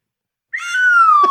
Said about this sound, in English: That was my swanny whistle that you played there.